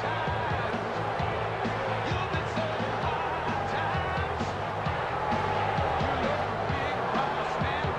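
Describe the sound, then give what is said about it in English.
A large WWF Superstars wrestling crowd boos a wrestler loudly and steadily for the full eight seconds, a dense roar of jeering voices with occasional dull thuds beneath it. “Man, he's getting booed the shit.”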